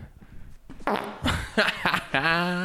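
A loud fart noise: a few raspy, sputtering bursts that end in a longer, buzzy, droning blat, heard alone with no talking over it.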